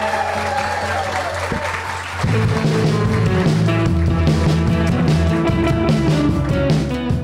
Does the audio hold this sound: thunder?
no